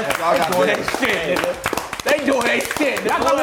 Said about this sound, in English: Let's just give Attack on Titan a I'm gonna give them a hand clap.